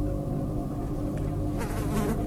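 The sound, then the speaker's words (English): A dense, steady drone of many flies buzzing together in a swarm, continuous with overlapping wingbeat hums and no talking. “They attract flies that bring with them foul and fetid air.”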